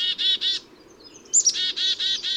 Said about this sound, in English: Even birds who visit backyard feeders, like these black-capped chickadees, need a healthy mix of seeds, berries, and insects, often found on the native plants that we villainize as weeds when they grow in our lawns